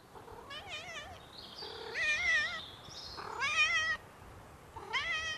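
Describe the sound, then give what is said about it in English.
A domestic cat meows four times in a row in a small loft room where the cats sleep, each cry drawn out and wavering, with short pauses between. The cat sounds moderately loud, and no one speaks. “So this is a little loft room. This is for the cats to sleep.”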